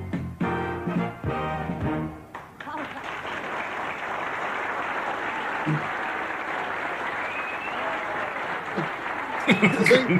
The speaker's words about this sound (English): You can hear applause. You just can't see anyone come.